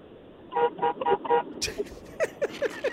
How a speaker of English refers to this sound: Hey, beep your horn.